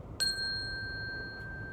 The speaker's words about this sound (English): I'd give her a little bell so I could always find her. Ring-a-ding-ding! There you are.